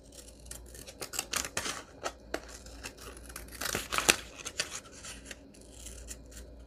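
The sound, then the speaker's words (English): Scissors snip steadily through paper, cutting a wave shape, a quick run of crisp cuts and rustles with brief pauses between strokes, no one speaking. “Ready? Hold your breath. And remember, it's only paper.”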